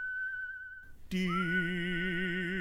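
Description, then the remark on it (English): A single steady whistled note holds for about a second, then a group of whistlers joins in loudly, layering sustained harmonized tones with a wavering vibrato. “Soon as I get a little backup, here they are, my whistling chorus.”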